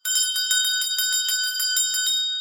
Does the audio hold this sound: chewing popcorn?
no